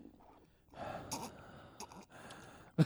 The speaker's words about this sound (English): You think people like it if I sip this whiskey right on mic like that? That'd be like me breathing.